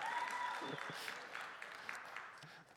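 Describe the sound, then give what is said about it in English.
An audience applauds a speaker coming up, with steady, dense clapping that holds at an even level before tapering off slightly at the end, with no voices over it. “So I got used to already applause when I come up here.”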